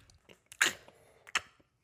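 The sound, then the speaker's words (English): A voice imitates exaggerated, noisy chewing of an apple: a couple of loud, wet crunching bursts separated by softer mouth smacks, with no other talking. “Then he bites his apple. And he's chewing it like very animated, right?”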